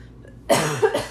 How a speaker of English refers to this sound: Excuse me. Got this lingering cough still.